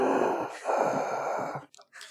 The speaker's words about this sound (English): I love, see, there's one right there, like sneezing.